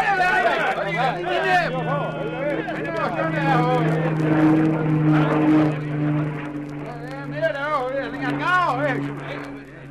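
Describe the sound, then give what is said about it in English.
A steady, low droning engine hum of a plane passing overhead holds constant throughout while several voices chatter over it. “It must have been the plane. They stopped to look at it as it went over and changed their direction when they moved off again.”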